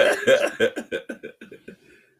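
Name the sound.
throat clearing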